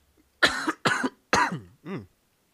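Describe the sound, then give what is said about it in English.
Three sharp coughs in quick succession, followed by a softer, voiced throat-clearing grunt, with brief pauses between each burst and no talking. “If y'all think I'm going to cut out all the coughs, you crazy as fuck.”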